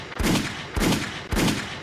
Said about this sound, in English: Gunshots.